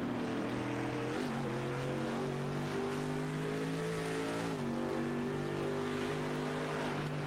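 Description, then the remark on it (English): A big Mercedes AMG race car engine roars continuously, its deep tone holding steady with slight pitch shifts as it pulls hard through the gears onto the Döttinger Höhe of the Nürburgring Nordschleife during an endurance race, with no talking over it. “Big Mercedes AMG motor stroking the car onto the Dottinger Höhe.”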